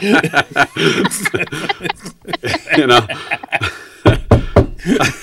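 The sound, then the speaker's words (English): Voices chatter and chuckle, then a short rhythmic series of knocks on a hard surface rings out, like a patterned secret knock of about four raps. “Amongst friends, there wasn't a certain knock that you to get in.”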